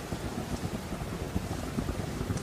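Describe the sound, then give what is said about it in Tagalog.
Steady rain pours down during a storm with a low, rumbling undertone like far-off thunder, a dense continuous wash of sound with no voices. “Sakto din yung ulam nating sinigang. Perfect para sa tag-ulan.”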